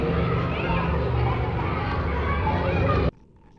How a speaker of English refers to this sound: At 8:30, you could hear the kids in the schoolyard.